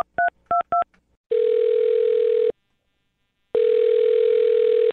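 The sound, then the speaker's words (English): Three quick two-tone keypad beeps as a phone number is dialed on the Brooke and Jubal in the Morning radio show, followed by two long steady ringback tones separated by a pause, clear with no voices. “All right, I'm dialing her phone number right now.”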